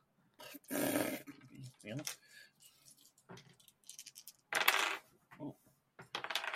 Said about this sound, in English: Everyone roll up some booty die. All right. I ended up with a lot of booty die.